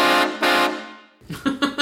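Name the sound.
train horn sound effect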